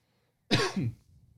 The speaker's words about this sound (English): You feeling okay? Yeah, I can't get rid of this cough. I'll stay away from you. It's just a scratch. It's not like a sickness. It's just in my throat.